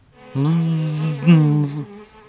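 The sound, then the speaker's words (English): A voice imitates a honeybee buzzing as it circles the head of Mvu the hippo, one ear and then the other: one steady, droning hum lasting about a second and a half, swelling briefly in the middle before cutting off, fairly loud. “While Mvu sniffs around a beautiful bunch of flowers, suddenly there is a honeybee. The bee begins to circle Mvu's head, buzzing one hippo ear and then the other.”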